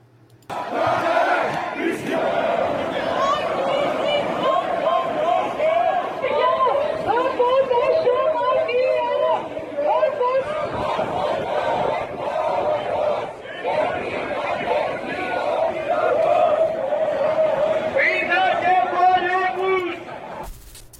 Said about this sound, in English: So, I mean, I'm not surprised that there's massive crowds there, too. Right. I wish I could tell you what they're saying, but the only Greek I know is how to cuss somebody out, so can't help you with that.